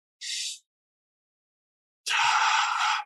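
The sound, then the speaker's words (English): A short, sharp inhale through the nose, a pause of about a second and a half, then a long, steady, forceful exhale, done as a breathing exercise for controlling one's state of arousal. Fairly loud, with no talking. “So create a practice around learning how to control your state of arousal through the breath.”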